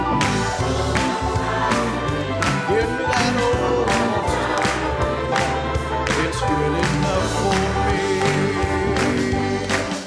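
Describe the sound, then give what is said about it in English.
An audience claps hands in praise to the Lord in a steady, rhythmic beat, the sharp claps repeating about twice a second over loud, continuous music with sustained organ-like tones and singing. “Just give the Lord a hand clap of praise.”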